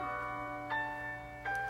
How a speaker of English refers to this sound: Just saying, the Samsung ringtones are fire. Like, I would love to wake up to this every morning.